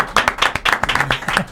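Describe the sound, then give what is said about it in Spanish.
A brief burst of live audience applause welcoming the director general of customs, Eduardo Sanz Lobatón: many hands clapping at once in a dense, irregular patter, fairly loud, sustained evenly for the whole moment. “Un aplauso.”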